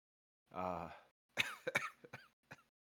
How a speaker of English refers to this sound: I'm sorry. I've got a getting a cough.